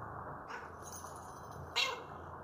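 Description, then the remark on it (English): A cat meows twice: a softer, drawn-out meow early on, then a sharper, louder one near the end, over a steady background hiss, with no talking. “Yeah, I'm coming, kitty, kitty. Stupid name for a cat.”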